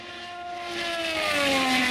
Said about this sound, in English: Is that pretty sad that my head is actually turning as if I'm watching the car go by me? What kind of car is that?